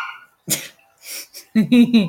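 puppy barking and whimpering

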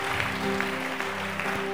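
audience clapping hands

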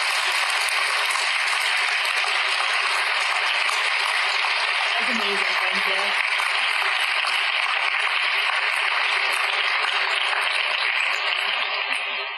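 audience applause

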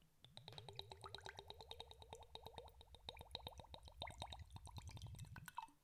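whiskey pouring

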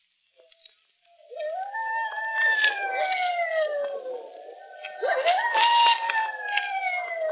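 hounds howling

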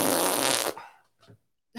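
fart sound effect

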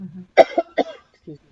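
cough

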